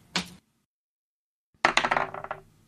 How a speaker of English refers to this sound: Shattered. That mirror explodes into pieces, and you feel crackle.